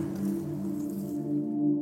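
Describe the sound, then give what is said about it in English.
Water trickles steadily down the middle of an old metal drainage pipe about 4 feet tall, a tunnel under train tracks at the end of Knox Street, its flow ringing into a low, hollow resonant hum with a faint hiss above, continuous with no voices. “There was water trickling down the middle of it.”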